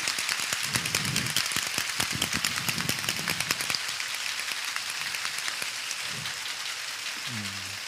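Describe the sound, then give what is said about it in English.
An audience claps steadily for several seconds to thank a woman for years of love and wish her a belated happy birthday, a dense crackle of many hands at an even loudness, with a few faint voices and a brief tonal call near the end. “So I want to, the camera will pan to all of you as we clap.”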